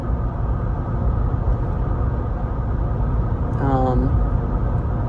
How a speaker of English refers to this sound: That's a fucking monster. I don't even know if that's a monster truck. That's something.